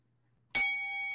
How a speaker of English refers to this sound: or I give you a nugget like that, we hit the media nugget bell.